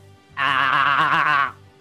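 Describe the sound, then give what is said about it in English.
A person imitates a goat's bleat: one wavering, nasal 'baa' held for about a second, loud, with no other talking around it. “I don't know if that was a really bad goat.”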